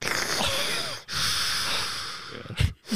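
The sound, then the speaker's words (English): A voice imitates heavy, rasping breathing, as if echoing inside a helmet: a long noisy inhale, a brief pause, then another breath ending in a sharp snort-like exhale, fairly loud. “It's like an outer space. You're breathing.”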